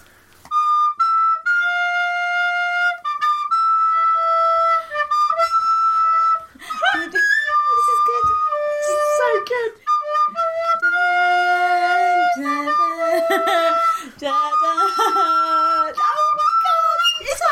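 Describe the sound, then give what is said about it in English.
A very cheap recorder plays a rave anthem for a guessing game, loud and shrill, with held notes and quick repeated melodic runs that grow busier toward the end. “I bought a very cheap recorder, and I've been practicing some rave anthems.”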